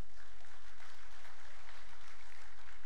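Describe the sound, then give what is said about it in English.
An audience claps together for mothers during a sermon, steady, dense applause lasting a few seconds, with no voices standing out. “If you're thankful for mamas, give them a round of applause.”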